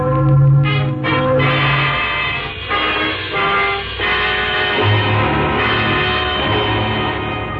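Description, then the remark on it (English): Church wedding bells peal loudly and continuously on a Sunday morning, several bells striking over one another in a dense, ringing wash of overlapping tones with no voices. “It's Sunday morning. Those are wedding bells, darling.”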